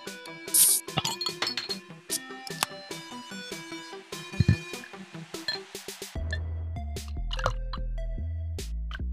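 Drinks being poured with glasses clinking: bright, ringing glassy clinks and drips in an irregular patter, then a steady deep low hum joins partway through. No one speaks.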